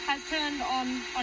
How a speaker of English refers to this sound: Has turned on its own. So the vacuum turns on by itself.